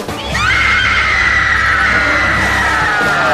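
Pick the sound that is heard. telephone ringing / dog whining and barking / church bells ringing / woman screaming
woman screaming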